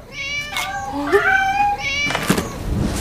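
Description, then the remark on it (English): Several cats meow over one another in a drawn-out, overlapping chorus, their high wavering cries rising and falling for a few seconds, with a faint background hiss. “Trick Go time, kitty cats!”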